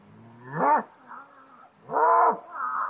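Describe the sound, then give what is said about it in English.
A big Black Angus bull bellows twice, loud drawn-out harmonic calls that rise and fall in pitch, each trailing off into a softer, lower moan, with no talking. “What it is, it's a big black Angus bull. He's out here just letting his presence be known.”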